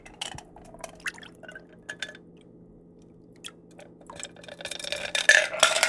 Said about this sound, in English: And now take your bar strainer and strain the cocktail over into the glass.